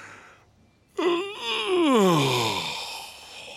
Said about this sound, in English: When you yawn, it makes me want to yawn too.